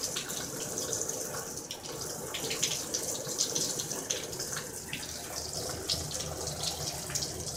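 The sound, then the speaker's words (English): Steady spray of running water hisses continuously as ducks are showered, with small splashy bursts and patter throughout; even in loudness, with no voices. “They're being showered.”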